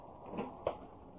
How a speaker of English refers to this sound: swing that door open, please, will you?